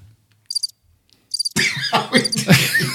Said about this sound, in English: I give you crickets on that one.